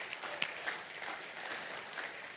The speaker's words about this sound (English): So I just want to thank you, and I'm going to clap on behalf of the council and the staff and everybody. You guys are doing a great job on all you're doing.